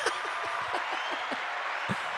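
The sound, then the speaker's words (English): A short burst of applause from a live studio audience for a 7-pound weight loss, steady dense clapping from a small group with a few sharper individual claps standing out, sustained at moderate loudness throughout. “That's the applause for your 7 pound weight loss.”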